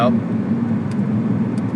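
A steady, low rumble of motorcycle engines idling and revving together in traffic, a thick continuous drone that holds even loudness throughout the short stretch.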